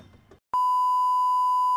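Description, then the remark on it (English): A brief burst of talking cuts off, then a loud, steady, high-pitched censor bleep sounds for over a second, a single continuous tone that blots out whatever was said. “We're going to have to beep all this.”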